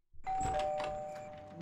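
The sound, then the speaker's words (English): A doorbell rings with a bright, sustained electronic chime that holds steady and slowly fades, heard clearly with some faint background noise underneath, in a TV scene where the guys ring the doorbell at Anne's house early in the morning while it is still dark. “And we cut to Anne's house, not for long, and we see all the guys ring the doorbell with Chris answering the door while wearing a headlamp.”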